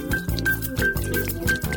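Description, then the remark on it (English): Bath water pours and splashes steadily into a tub, a continuous, moderately loud gurgling rush with small bubbling surges, heard on its own without any talking. “behind me, you hear the sounds of the bath water being poured.”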